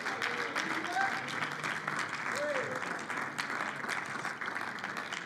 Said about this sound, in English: Oh, somebody clap your hands and just shout a little bit now.